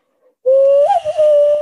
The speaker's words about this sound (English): But does it do it when I whistle?